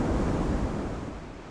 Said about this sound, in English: The wind is going to blow us away.